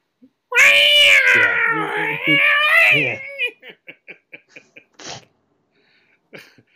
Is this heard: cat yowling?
yes